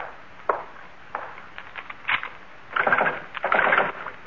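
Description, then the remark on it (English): The back door of a shop being locked: a few scattered wooden knocks and clicks, then two longer rattling bursts of metal and wood as the latch and bolt are worked, with no talking. “Well, first the back door.”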